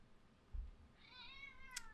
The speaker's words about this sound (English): I better go pet this cat.